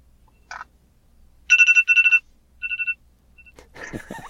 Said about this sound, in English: Oh, there's the timer.